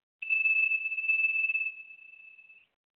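A glass tincture bottle, tapped to test its sound, rings out with one clear, high, steady tone. It sounds slightly rough and buzzy for the first second and a half, then thins to a pure ring that fades away.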